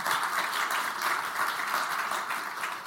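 An audience applauds steadily to welcome panel guests from Sky Sports and the FA Women's Super League, a dense wash of many hands clapping at once, fairly loud and sustained for a few seconds without any voices over it.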